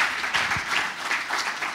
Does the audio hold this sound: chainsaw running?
no